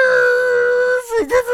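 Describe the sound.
A voice imitates car sounds to introduce a segment about Rock Auto, holding a loud, steady humming tone for about a second, then dipping and wobbling in pitch through a few quick revving bursts.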